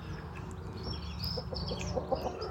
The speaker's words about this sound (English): Hello that's BB, one of my favourite chickens.